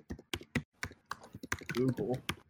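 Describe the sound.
Sharp, irregular clicks of typing on a computer keyboard as people search Google for the anime Perfect Blue, keys tapped in quick uneven bursts, with a brief stretch of someone talking partway through.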